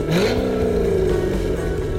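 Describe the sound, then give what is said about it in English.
A powerful 6.2-liter supercharged V8 engine of a C7 car, making 650 horsepower, revs loudly, its pitch climbing quickly and then holding at a steady roar for about two seconds, with no voices. “With a 6.2-liter supercharged V8 cranking out 650 horsepower and an equal amount of torque, there's no delay in getting anywhere.”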